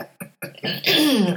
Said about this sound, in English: I still have to clear my throat a lot. Really? It's really annoying.